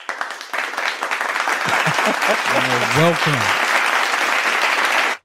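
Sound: applause sound effect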